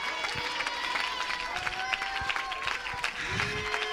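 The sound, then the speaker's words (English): A large audience, standing, claps steadily throughout, a dense, continuous patter of many hands at even loudness, with sustained tones and voices mingling underneath. “Stand to your feet and clap your hands if you're willing to let that sling go and send that rock into his head.”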